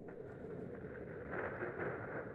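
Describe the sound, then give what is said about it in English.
A sound machine's thunderstorm track: a steady, dense low rumble under a rushing, windy hiss that swells slightly louder partway through, with no distinct cracks and no voices. “So this is thunderstorm.”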